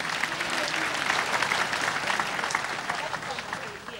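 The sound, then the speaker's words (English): A crowd claps for Jesus Christ after a prayer, a dense wash of overlapping hand claps at a fairly even loudness that tapers slightly toward the end, with faint voices mixed in underneath. “Once again, let's clap for Jesus Christ.”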